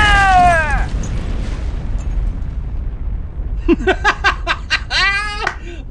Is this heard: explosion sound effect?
yes